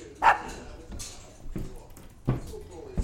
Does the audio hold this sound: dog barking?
yes